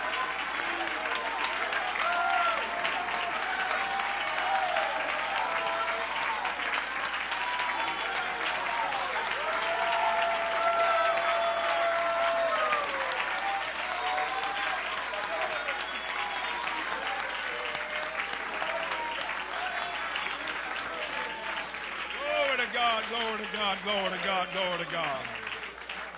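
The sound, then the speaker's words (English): A large crowd claps steadily and loudly while voices shout and cheer to God throughout. A dense, continuous roar of applause, with scattered raised voices rising over it. “Bible said, clap your hands, all you people, and shout unto God with a voice of triumph.”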